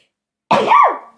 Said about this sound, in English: I feel like I'm going to sneeze.